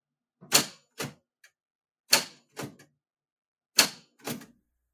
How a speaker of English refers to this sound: what are you doing with that typewriter? He's mangling it is what he's doing. There is absolutely no mangling going on.